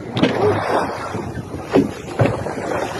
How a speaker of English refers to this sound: This is a short video of the orcas specifically attacking the propellers on this boat.